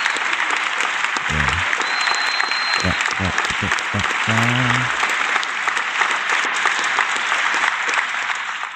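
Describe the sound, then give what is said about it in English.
A round of applause: steady, dense clapping that fills the whole clip at a loud, even level, with a few brief shouts or voices breaking through early on before the clapping carries on alone. “Let me just, where's my round of applause?”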